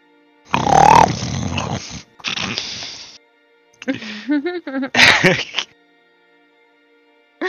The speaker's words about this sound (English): You hear the grunts and snores and smacking lips of Gurn from the other side of the dome, breaking this silence.